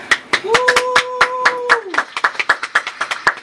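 A small group claps steadily, with sharp, uneven hand claps throughout, while one voice lets out a long sustained whoop partway through; applause for the host's partner.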